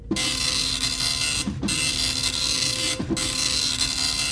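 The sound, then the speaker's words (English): An old scroll-paper dot-matrix printer rattles loudly and continuously, its harsh buzzing screech broken by two brief pauses as the print head returns, giving three long printing passes. “Imagine a massive replicator with Klingons coming out head first like it was a printer, making those old school scroll paper printer noises too as replicated.”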